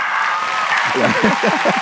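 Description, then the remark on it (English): Steady crowd applause fills the whole short clip as a dense, hissing wash of clapping, with cheering voices rising over it in the second half. “And the crowd goes like.”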